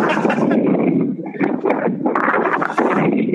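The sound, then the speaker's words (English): Loud, continuous wind buffeting a phone microphone outdoors during a phone call, a rough rumbling roar that surges and dips in gusts for a few seconds, with no clear speech. “it sounds windy out there, but I've just got one question for you.”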